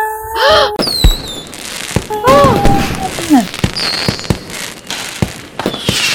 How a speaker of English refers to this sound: Oh, it's actually quite pretty. You know what? I love fireworks.